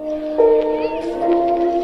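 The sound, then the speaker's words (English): Mellow lo-fi hip-hop music from a 40-minute Samurai Japanese Lo-Fi Hip-Hop Mix video, with sustained, gently wavering instrumental tones over a soft bed of vinyl crackle, at a steady moderate level with no talking. “The very first thing that comes up is Samurai Japanese Lo-Fi Hip-Hop Mix.”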